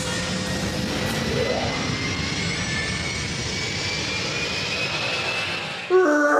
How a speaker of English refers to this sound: It's an aeroplane, I'm sorry. That is a jet. It's the Millennium Falcon. Millennium Falcon.